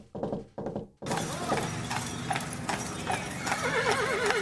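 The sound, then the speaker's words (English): A person imitates horse hooves clip-clopping at a steady pace over a rattling carriage, after two brief opening bursts, with a high wavering whinny rising near the end, all fairly loud. “Horse and carriage. I need the coconuts.”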